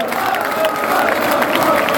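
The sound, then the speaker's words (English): Loud, steady applause from a stadium crowd at the Emirates Stadium in London after an away win, as players greet the fans and Graham Potter applauds them: a dense wash of clapping mixed with cheering and indistinct voices that holds at the same level throughout the two seconds. “Potter's applauding the fans and the support.”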